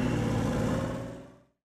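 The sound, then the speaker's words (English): A car engine revs as the car is put in gear and pulls away up the street, its steady hum rising briefly and then fading quickly into silence as it drives off. “Steve looks in the rearview mirror, spotting Dean smiling and Marcus shaking his head as they stand on the sidewalk, then puts the car in gear and drives up the street.”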